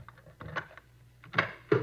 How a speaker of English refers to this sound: Here we are. I'll get the door.